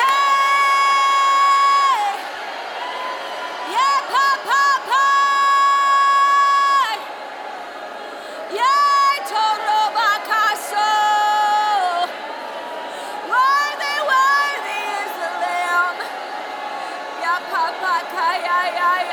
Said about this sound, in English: Some of you got to learn to hear yourself and be comfortable. Let a roar come from your belly. Let high praises come out.